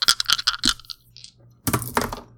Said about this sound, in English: Give me a human name roll to see how far you advance this clock. Where's my dice? Here we go.